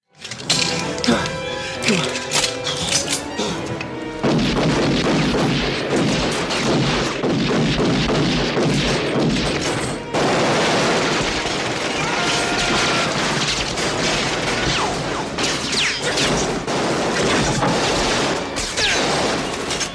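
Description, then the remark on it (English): Rapid handgun shots crack out in a loud, continuous burst as McClane fires upward from underneath a painter's platform while shoving it, mixed with crashing and clattering debris as the goon and platform come down, in a dense, chaotic action scene. “So McClane just kind of says, fuck it, by getting underneath him, unloading his gun upward while shoving the bottom of the platform until this goon comes crashing down with the platform.”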